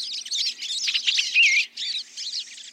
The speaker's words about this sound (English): The sights and sounds of birds visiting a feeder in the backyard or a local park can brighten our days